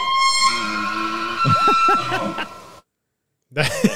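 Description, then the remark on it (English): A loud elk call sound effect played in the Edmonton Elks' stadium: a high, whistling, horn-like tone with layered harmonics and wavering pitch. It cuts off abruptly, then returns briefly after a short silence. “Is that a whale? That's the elk sound.”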